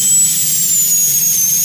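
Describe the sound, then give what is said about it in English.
A dentist's drill whines continuously at a high, steady pitch that drifts slightly downward, loud, with a low rumble of machinery underneath and no voices. “There's nothing worse to me than the sound of a dentist drill.”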